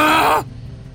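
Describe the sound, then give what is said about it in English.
A man with a bloodied gash on his face lets out a loud, strained scream of pain lasting under half a second, its pitch dropping at the end before cutting off into quiet. “He quickly returned his palm to the bloodied gash and screamed.”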